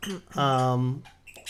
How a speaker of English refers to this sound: Where did he get these squeaky? I don't know. We literally do so good throughout the podcast, and then he finds a way to make finds some noise. He finds a squeaky toy somewhere.